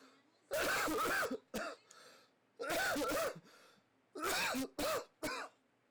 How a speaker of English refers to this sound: just coughed again.